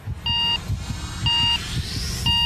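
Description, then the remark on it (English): An on-screen countdown before a large missile test launch from a mobile launcher: three evenly spaced sharp electronic beeps about a second apart, each a bright steady bleep over a low, rumbling background hum. “So we can see them wheeling the thing out and raising it up on a mobile launcher, and then there's an on-screen countdown.”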